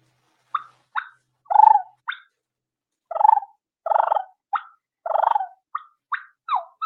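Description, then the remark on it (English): A hunter's imitated turkey hen calls, simulating a feeding hen: sharp, short clucks interspersed with several longer rolling purrs and a little whine, fairly loud, in an irregular sequence with no talking. “And that's clucking, purring.”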